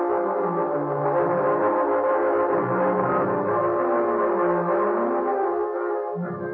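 A train carrying three Los Angeles detectives rumbles steadily along the track as it climbs through the Cajon Pass, loud, with a droning, tonal whine layered over the low churning noise throughout, and no voices.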